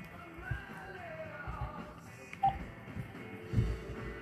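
A telephone dial tone hums steadily throughout, with a few soft knocks and handling bumps underneath; no one speaks.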